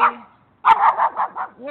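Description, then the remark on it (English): A dog barks in a quick burst of several sharp barks after a brief pause, with a short yip at the very end. “The dog's back?”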